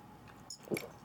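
A brief, quiet moment of someone drinking water, with soft mouth sounds and a small gulp near the end, no talking.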